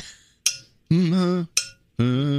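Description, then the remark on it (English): A tin cup is struck twice, each sharp clink ringing briefly and fading, and after each strike a voice sings a sustained note as if matching its pitch. “Here's a tin cup.”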